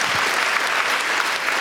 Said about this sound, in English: Give him another clap. That was just awesome.